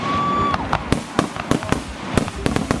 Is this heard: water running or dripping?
no